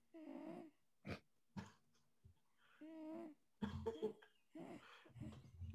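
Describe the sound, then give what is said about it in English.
A male cat snores loudly, a run of rough, wheezy snorts and breaths coming in irregular bursts with short pauses between them, and no one talking. “Is the cat he's dreaming? Snoring. Oh, he's snoring. He's so loud.”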